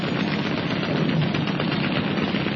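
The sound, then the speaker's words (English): A small boat's machine guns blaze from both sides as it zips into a gap beside a German E-boat: a sustained stretch of rapid fire, dense and steady, with the bursts blurring into a loud, continuous rattle over a low rumble. No one speaks. “Roberts swung hard on the wheel, and the small boat zipped into the gap, her machine guns blazing out defiance from both sides.”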